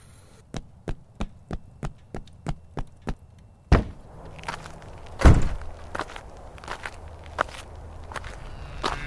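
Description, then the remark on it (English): Quick, evenly spaced footsteps thud across a hard floor, about a dozen, as a person runs to the door, followed by a heavier thump and clattering knocks as the door is reached and handled. “I quickly rushed to the kitchen, poured another glass of water, and ran to the door.”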